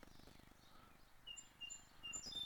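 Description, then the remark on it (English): Faint birds chirping in short thin whistles, more frequent toward the end, over a low steady hum and soft background rumble. No one speaks. “That's not the birds chirping, I'll tell you that.”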